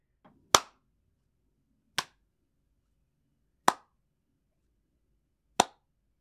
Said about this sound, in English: You would love this guy, man. You should slow clap this guy right now. He's your boy.